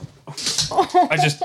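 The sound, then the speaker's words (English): A dog whimpers in a quick series of short, high whines and yelps that rise and fall over about a second and a half, after being accidentally hit on the head with a water bottle. “I just clocked our dog in the head with my water bottle.”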